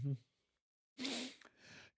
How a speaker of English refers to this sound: I yawned again. And it's a video. I think it makes it seem like I'm not interested.